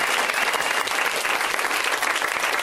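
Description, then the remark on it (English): An audience claps steadily for the comics waiting backstage, a dense wash of many hands with no distinct individual claps standing out, holding at a fairly loud, even level throughout with no talking over it. “You can clap for them.”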